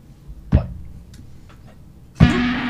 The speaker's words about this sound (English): you're turning it into a square wave using the fuzz pedal